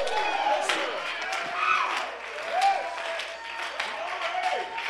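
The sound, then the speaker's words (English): An audience claps steadily and cheers in praise of God, with a dense wash of hand claps under repeated rising whoops and shouts from many voices, loud and continuous throughout. “Oh, clap your hands, all you people, and woo!”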